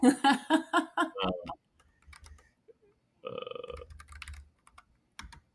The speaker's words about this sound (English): This keyboard actually has more sensitive keys, so maybe the anxiety level is actually pressing keys here.